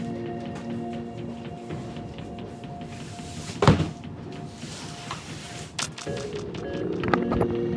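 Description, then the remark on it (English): A box cutter opening a cardboard box of Nestle water door hang bag samples: a sharp thump and rustling scrape near the middle, another brief clatter later, over a steady low room hum with no talking. “So I got the box cutter. I'm gonna open up another Nestle water door hang.”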